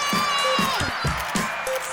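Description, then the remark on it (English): Loose, uneven clapping over a steady wash of crowd noise, with a few high whistle-like tones and scattered cheers mixed in. “You could give yourself a little clap.”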